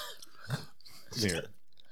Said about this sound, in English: Can you hear me chewing bubblegum? I feel like it's so loud and I hate it.